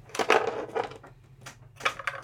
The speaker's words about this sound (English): Let's roll dice again.